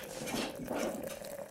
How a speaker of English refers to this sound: I'm going to pour myself some coffee.